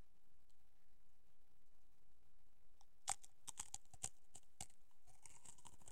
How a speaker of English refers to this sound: … brought some chips today, guys, and I mean, here's a little ASMR for you.